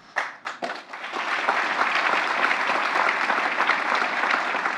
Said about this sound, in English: The crowd applauds as President Biden places the distinguished medal around Dr. Cooper's neck. It's a powerful moment for him, his family, and everyone gathered.